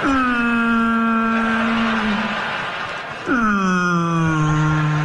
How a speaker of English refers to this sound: Whales always kind of sound depressed, don't they?